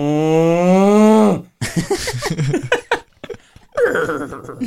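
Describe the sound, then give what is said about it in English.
A person gives a loud, drawn-out imitation of a cow's moo lasting over a second, followed by a burst of talking and laughter. “I pride myself on my farm animal impersonations.”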